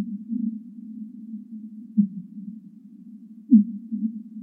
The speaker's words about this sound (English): Fin whales are relatives of blue whales, and they sing as they travel, like this song, which has been sped up by 10 times.